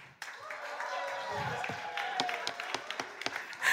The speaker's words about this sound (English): If you believe that the affirmative convinced you without a shadow of a doubt in your mind that nature does know best, I want you to start cheering for the affirmative.